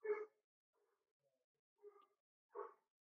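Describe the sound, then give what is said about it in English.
A dog barks three times with uneven pauses between them, the first bark loudest and the later two a bit softer, with no voices around. “Barking. I hear him. Aroo-roo.”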